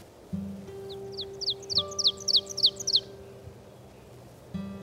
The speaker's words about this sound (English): The oven bird, sometimes called teacher bird, from its song.